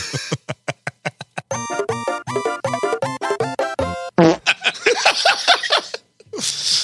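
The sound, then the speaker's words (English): A loud fart sound effect played from a soundboard sputters in a run of rapid buzzy pulses, stretching into a longer flapping blast, followed by bursts of laughter and breathy noise. “How many dick and fart jokes can we add into one fucking episode?”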